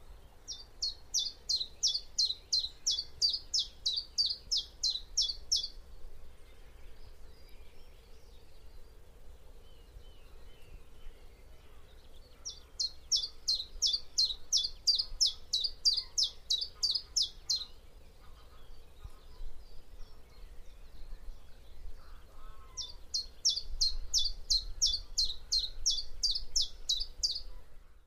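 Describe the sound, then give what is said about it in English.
A chiffchaff sings three bursts of its simple, evenly repeated high notes, each phrase lasting several seconds with pauses between, clear over a faint low background hum. “In the spring, singing chiff-chaffs are easy to identify, as they sing their name out loud in a simple chiff-chaff, chiff-chaff song, from perches in budding trees or blossoming bushes, pumping their tails up and down as if they couldn't be happier”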